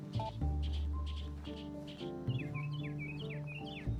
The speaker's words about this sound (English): Can you hear that bird over the thunder you're hearing?